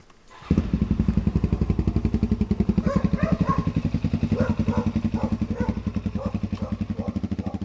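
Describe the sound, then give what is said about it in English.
At Trevelyan Station, a man hops on his motorbike; its engine roars into life, then runs loudly and steadily with a rapid, throbbing rhythm. Fainter intermittent higher-pitched sounds surface over the engine noise partway through. “Back at Trevelyan Station, Jack Ashby hops on his motorbike and shows us an unmistakable marker of his family's connection to this country.”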